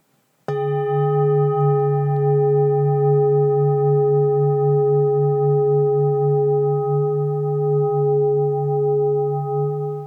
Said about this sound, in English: So this one, it holds its gong a long, long time. It really does, because even when you first did that, I could feel it from here across the table. Yeah. Yeah, which is pretty amazing. Yeah. So, and that's a beautiful, deep sound.